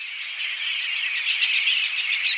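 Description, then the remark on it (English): A dense chorus of American robin (Turdus migratorius) calls, many overlapping chirps and squeaky notes chattering continuously at a steady, moderate loudness, like a flock gathered together, with no voices. “The American robin, Turdus migratorius, is territorial in the summer breeding season.”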